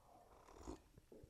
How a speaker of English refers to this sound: I hope you're enjoying your coffee, and here's a space for a sip.